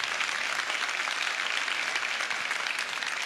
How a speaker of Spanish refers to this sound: Aplauda fuerte a Dios.